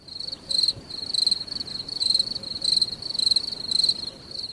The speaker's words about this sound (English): Can I get some crickets, please?